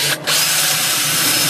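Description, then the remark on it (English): A loud power drill whines and grinds steadily as it drills into a lock, with a brief catch near the start before biting back in at full speed. No voices are heard. “The power tools are coming out, everyone.”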